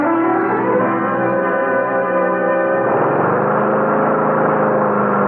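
A lawn mower engine runs loudly and steadily, a buzzing, harmonic drone that shifts its pitch slightly about halfway through and keeps going with no voices.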